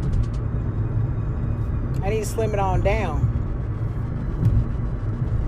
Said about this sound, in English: I feel like I'm hollering at the phone because I'm in the car and it's like loud in here. So I feel like I'm hollering.